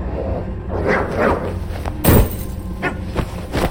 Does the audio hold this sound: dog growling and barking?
yes